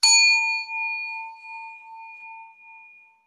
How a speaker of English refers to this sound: So I just want to invite you. I'm going to ding my singing bell, and let's just take a collective breath together.